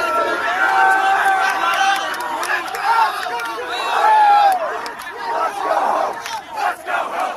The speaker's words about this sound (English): They're cheering and chanting, let's go home, let's go home.